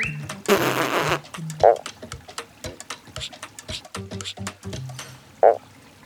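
A Mount Bellow mountain frog calls in a series of low, rasping, flatulent-sounding croaks and clicks, irregularly spaced, with two louder, sharper bursts standing out from the run.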